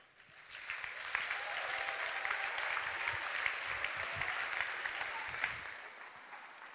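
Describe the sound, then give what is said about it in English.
A room full of people applauding steadily for several seconds, dense overlapping claps at moderate volume that swell quickly, hold, and taper off near the end. “It's one thing to clap, isn't it?”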